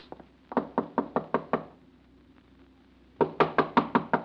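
Two bursts of sharp knocking on a door: about six rapid raps, a pause of over a second, then another quicker run of six. The knocks are loud and insistent, with no talking.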